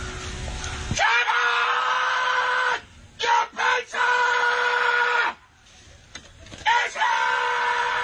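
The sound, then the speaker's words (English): A middle-aged man lets out loud, raw, drawn-out screams at a front door while delivering a pizza, in several long bursts broken by short pauses and a couple of quick shouted yelps. “He screamed, Shannon, your pizza is here.”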